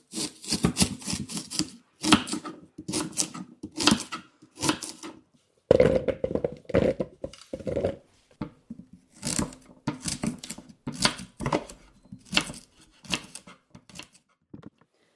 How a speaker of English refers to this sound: Some of this is quite big, so I'm chopping it into sort of 1 centimetre cubes, and then I'm going to chop it again down the middle.